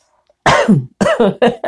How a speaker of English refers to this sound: Really, I'm not coughing because I just got a tickle in my throat right then.